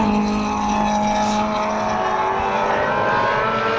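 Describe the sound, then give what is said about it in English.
A race car engine screams at high revs in a loud, steady whine as the car crosses the finish line first under the checkered flag, its pitch wavering slightly as it roars past, with no voices. “That was Tomo going across the line first”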